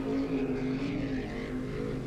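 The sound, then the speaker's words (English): A speedboat engine buzzes steadily as the boat comes down a canal, a loud continuous motor drone with a strong low hum and a rough, slightly wavering rasp above it. No voices. “But just as Harry was contemplating his next move, he heard a buzzing noise coming from further down the canal.”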